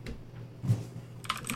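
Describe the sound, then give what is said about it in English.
Typing on a brand new mechanical keyboard: a quick run of crisp, clacky keystrokes, with a low hum underneath and the clicking growing denser and brighter toward the end. No one speaks. “I'm just going to play this out to the dulcet sounds of a brand new mechanical keyboard.”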